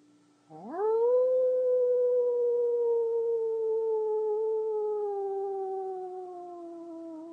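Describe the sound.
A single long human howl during a meditation swoops up at the start, then holds a steady, gradually sagging pitch for several seconds, loud with no talking or other sounds around it.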